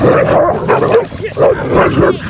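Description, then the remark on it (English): A dog barks repeatedly and agitatedly at a fence, in a rapid run of sharp barks mixed with whiny yips, with people talking over it; the barrier-reactive barking is drawing another dog to come check it. “And your dog's now causing another problem because your dog's barrier reactivity that you're seeing right now is starting this other dog to want to come and try to check your dog.”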